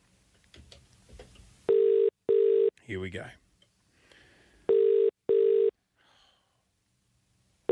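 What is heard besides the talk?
outgoing telephone call ringing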